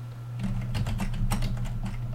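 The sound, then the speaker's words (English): Rapid, steady typing on a regular computer keyboard, a quick run of soft clicky keystrokes over a constant low hum, with no one speaking. “That is the sound of my keyboard.”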